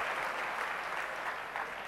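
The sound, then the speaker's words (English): An audience claps a clap offering honoring the speaker's mother, a dense, steady burst of applause lasting a couple of seconds, loud and even throughout with no voices standing out. “And I realize that the things I'm about to share with you, out of experience, even my own life, from conception, when I was in my mother's womb, give her a clap offering.”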